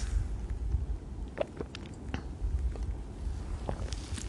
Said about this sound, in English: I'm taking another sip of my loud beer.